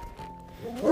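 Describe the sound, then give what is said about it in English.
A dog lets out a single bark near the end, rising sharply in loudness after a stretch of low background murmur and a faint steady tone. “Yes, that's right. That was a dog.”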